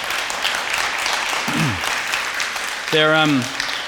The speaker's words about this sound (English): One, give a big round of applause to the cleaning crew. There you go.